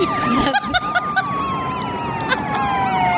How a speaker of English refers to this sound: Okay, now there's three police cars chasing us.